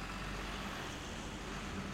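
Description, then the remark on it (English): A large garbage truck rumbles steadily in the distance as it handles its bins, a low, continuous engine drone with a broad wash of road noise and no distinct clanks standing out. “In the distance, a large vehicle rumbled and clanked, garbage truck engaging in intercourse with its bins.”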